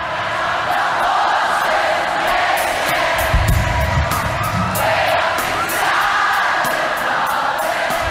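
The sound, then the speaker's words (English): A massive crowd of thousands cheers and roars without pause at the Firefight Australia benefit concert at Sydney's ANZ Stadium, a dense, loud wash of voices with scattered whoops and shouts rising through it. “entertained a crowd of thousands over 10 hours at Sydney's ANZ Stadium.”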